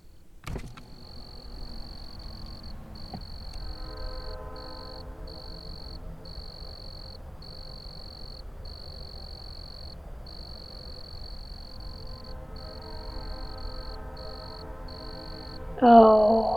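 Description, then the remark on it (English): Crickets chirp steadily in evenly spaced, rapid bursts through the night air, with a low droning hum underneath and a brief clatter near the end. “Hey, do you want to hear the crickets?”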